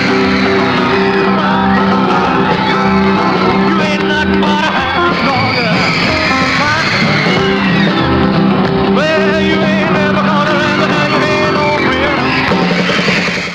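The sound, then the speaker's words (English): Girls in the audience at The Ed Sullivan Show scream continuously at a gyrating performer, a dense wall of shrill, overlapping shrieks that stays loud for the whole stretch, with a steady low hum underneath. “something he was doing below the waist was causing screams from girls in the audience.”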